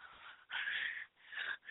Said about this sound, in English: But back to my shocking gasp. Can you believe it's June 1st?